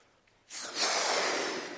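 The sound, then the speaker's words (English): After a brief quiet moment, a long, steady rush of breath blows up a small balloon, a breathy hiss lasting over a second with no talking. “If I take this balloon, I blow it up.”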